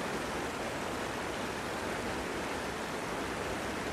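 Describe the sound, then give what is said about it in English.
A steady, unbroken rush of river water flowing past, a dense hiss and burble that holds the same level throughout with no voices, as someone fishing wades into the middle of the river's main current. “I just walked into the middle of that first main tongue, as well as in this corner of the river, and there is good depth there, so should have had a few front of me.”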